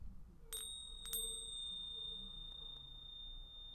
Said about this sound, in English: Okay, and let's do a little, I'm gonna ring my bells here, so wherever you are, you know, just take this moment to just connect with your breath if you can.